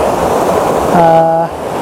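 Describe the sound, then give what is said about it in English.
Loud, steady rushing white water, recorded pointing straight down at it from where someone stands, fills the whole recording with dense roaring noise, broken briefly in the middle by a short humming, voice-like tone. “Straight down at this white water at my feet.”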